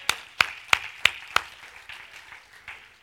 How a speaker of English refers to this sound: I'm glad you're excited too. Could you give the Lord a hand clap?